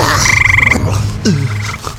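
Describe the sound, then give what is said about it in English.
Toads croak in a loud, busy chorus, overlapping rattling trills and deep throaty calls with a low droning undertone. No one speaks. “Before Hazel can so much as offer Wolf a neck scrub, the vault fills with goblins and tuxedo-wearing bat-winged toads.”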